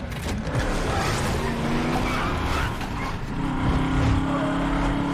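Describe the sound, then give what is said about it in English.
A car drives hard, its engine roaring steadily with a whining pitch that climbs partway through, tires hissing and squealing over the road noise. No one speaks. “You can drive it. Cars.”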